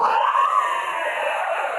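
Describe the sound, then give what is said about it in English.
A person voices a drawn-out, strained scream, imitating a creature crying out in agony. It is loud, holding steady for nearly two seconds with no other talk. “As you can just hear it scream out in agony.”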